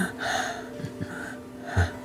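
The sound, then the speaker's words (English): Heavy, ragged breathing from a bloodied male drow, a few labored breaths in and out with a sharp gasp near the end, no talking. “Hair tattered and matted, and this is kind of breathing a little heavy.”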